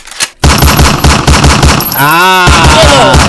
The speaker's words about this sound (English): Ah! Yeah, those gunshots. Look, you heard that shit? You heard that shit, huh?